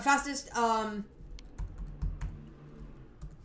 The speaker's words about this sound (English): I'm typing.